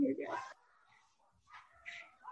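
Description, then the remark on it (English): Small dogs barking excitedly in a few sharp, high-pitched bursts, one loud yap up front and a couple more a moment later, slightly muffled. “Oh, now the dogs are going crazy.”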